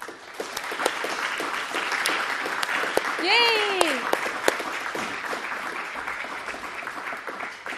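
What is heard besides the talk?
audience applause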